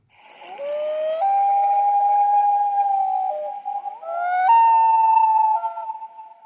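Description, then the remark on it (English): A loon's wail, a social call to its mate: long, mournful, tonal notes that slide upward and hold, then a second phrase jumps to a higher pitch. It is loud and clear, alone with no voices. “Now, the one that we heard in the intro, which is perhaps the most iconic loon call, is known as the whale.”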